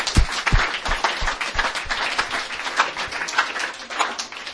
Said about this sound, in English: But I wanted to thank all the people who've, basically gone out and bought the food and done all that work. So let's give them a round of applause.